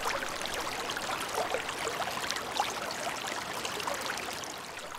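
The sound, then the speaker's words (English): Steady rushing of river water flowing, recorded with a Rode NTG3 shotgun microphone: a continuous bright hiss with small gurgles and splashes throughout, with no voices. “So this episode is based on two things, a shotgun microphone and a river.”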